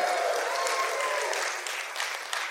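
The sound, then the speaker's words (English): An audience claps steadily, a dense patter of many hands that stays fairly even before thinning slightly toward the end, with a few faint whistle-like tones above it early on. “You can applaud that.”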